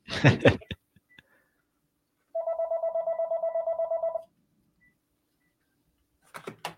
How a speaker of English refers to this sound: Really, I'm getting a phone call. And usually when it's on the landline, it's spam. So I'm going to hang up on them right now.